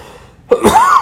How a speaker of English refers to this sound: You're banned from coughing. I need to be drinking my seltzer that I have. I need a cough drop, too.